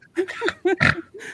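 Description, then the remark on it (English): A person laughs and lets out a couple of loud pig-like snorts, harsh nasal grunts breaking up short bursts of voiced laughter. “… literally snorting like a pig?”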